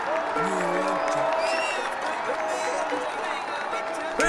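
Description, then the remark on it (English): A dense, steady roar of a large crowd cheering and whooping after a goal as the team lifts the county cup, with scattered applause and overlapping shouted voices, loud and continuous throughout. “Give me a look at the crowd roaring and the boys lift the cup.”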